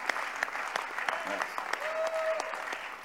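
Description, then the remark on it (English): A crowd applauds steadily, many hands clapping in a dense, continuous patter with a few sharper claps standing out, and a faint tonal whistle or voice rising briefly in the middle. “The clapping is not one clap.”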